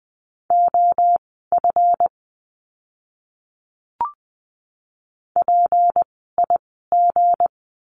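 A Morse code word sent at 20 wpm in a practice lesson on the letter g: a steady mid-pitched tone keyed in quick dots and dashes, two groups, a lone click, then three more groups, with no voice.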